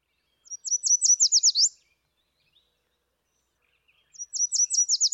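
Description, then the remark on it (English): A Yellow Warbler sings two bright, high phrases of quick sweet notes, each speeding into a run, separated by a few seconds of silence. The song is clear, with no voices. “I really like the one by the Yellow Warbler, actually.”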